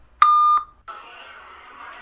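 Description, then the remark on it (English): A single loud, steady electronic beep lasting about half a second, a phone voicemail tone after the outgoing greeting, followed by a soft hiss of an open phone line. “This is Andy's phone. Leave a message.”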